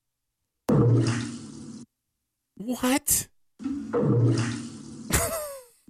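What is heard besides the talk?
toilet flushing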